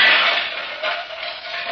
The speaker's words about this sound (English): Oh, what was that? Sounds like he's pulling the pots and pans out of the cupboard.